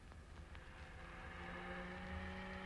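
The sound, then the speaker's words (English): A car's steady engine roar with rising harmonic tones as it is driven fast and accelerates hard, loud, with continuous rumble underneath and no voices. “I'm in this car with you. Man, Six, what's he doing, trying to kill us?”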